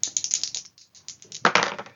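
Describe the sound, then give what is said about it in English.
Dice clatter and rattle across a hard surface in a rapid burst of sharp clicks, settling briefly before another louder tumble of clacking dice. The roll gives a 6, with challenge dice of 4 and 7. No voices. “Yes, I think you're fleeing, so roll me plus edge.”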